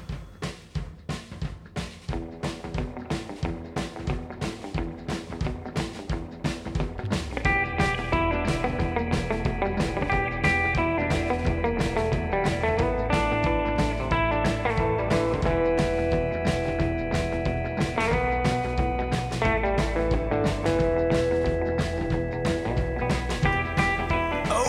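A loud, driving instrumental rock track with distorted electric guitar over steady drums; the full band kicks in after a few seconds and keeps a dense, constant groove throughout, with no vocals.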